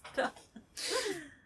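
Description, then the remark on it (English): A short intake of breath and brief vocal noises lead into one loud sneeze with a breathy burst that trails off in a voiced tail. “Just sneezing and licking your pillows”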